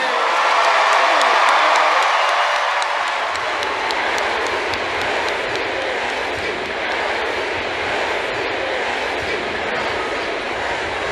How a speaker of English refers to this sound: We are watching that procession now, heading away from Staples Center. A lot of folks clapping and cheering him on as he makes his way closer to his store.